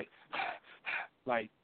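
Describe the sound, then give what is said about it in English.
A person demonstrates forceful breathing, inhaling and exhaling through the nostrils: three sharp bursts of air, the last one rougher with a voiced, snorting edge. “They breathe they do an inhale and an exhale through their nostrils forcefully.”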